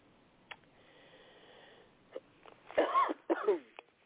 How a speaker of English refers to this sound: Excuse me for coughing.